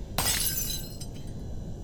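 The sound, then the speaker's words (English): A glass tequila bottle crashes and shatters in one sudden, loud burst, its bright ringing shards fading out, followed by a couple of small tinkles of falling pieces. “She kept banging and banging, and then suddenly, a crash.”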